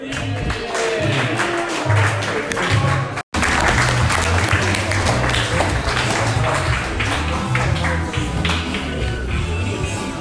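Loud, sustained applause from a show audience for a performer, dense clapping filling the full span with a brief dropout early on, low murmurs and cheering mixed underneath.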